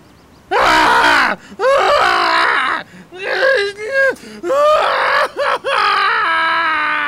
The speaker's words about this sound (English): Nothing much happened till we went over to the running track and saw a naked guy running around and screaming.